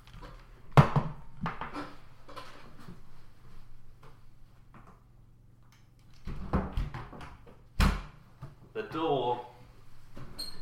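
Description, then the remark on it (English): A door that had come open is being closed: it shuts with a sharp knock early on, then after shuffling and handling noises a second solid thud lands, with faint muffled voices. “So you're just going to hear a load of noises of a door opening.”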